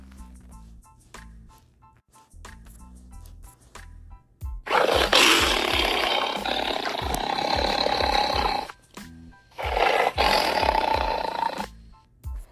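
A tiger gives two loud, rumbling roars, the first long and sustained, the second shorter after a brief pause, with low growling textures underneath and no one speaking.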